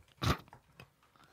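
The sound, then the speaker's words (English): A sharp crunch as a small, brittle edible ant is bitten, followed by a few fainter crackly chews over the next second, with no talking. “That one's just going to be crunch.”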